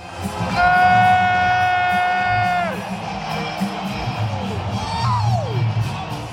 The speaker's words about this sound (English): That is me screaming in excitement. I got a little caught up in the moment